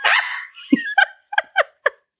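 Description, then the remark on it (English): A person imitates a monkey's shriek: a harsh, drawn-out screech followed by four short, sharp, high-pitched yelps in quick succession, loud, with no talking. “You made a super monkey sound.”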